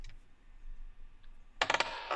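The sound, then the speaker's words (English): Dice clatter across a hard tabletop: a quick burst of sharp, rattling clicks, then a brief softer rattle as they settle. The dice are rolled for an insight check in a tabletop game. No one speaks. “I would also like to make an insight check. Sure. Where did my dice go?”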